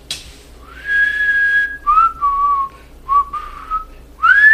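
A person whistles a slow melody up close, holding long clear tones that slide between pitches, with brief breaks between phrases and no talking.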